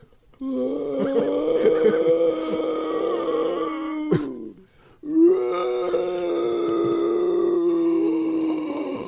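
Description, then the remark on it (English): A person imitates howler monkey calls with two long, loud, rough howling groans from the throat, separated by a short breath pause, with no other talking. “Oh, I was trying to do the Howler Monkeys.”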